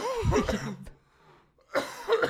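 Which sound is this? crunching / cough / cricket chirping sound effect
cough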